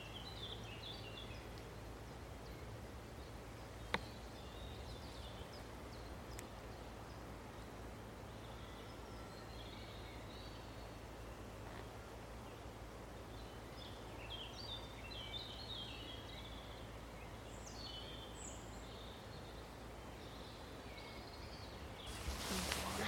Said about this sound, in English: And while we're listening, if you can, and some of you might be really good with birds, but have a listen to how many different songs you can hear, different species of birds you can pick out.